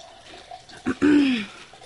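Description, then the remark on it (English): A brief splash of a drink being poured into a glass, lasting about half a second after a short knock, then fading into quiet. “That pouring noise you hear in the microphone is me making myself another drink.”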